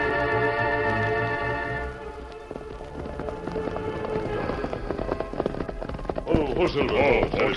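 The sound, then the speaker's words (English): A horse named Silver clip-clops in a steady rhythm that slows and comes to a stop, following a brief sustained tone, with a rushing, rain-like noise underneath. “Oh, easy now. This the place, Tonto?”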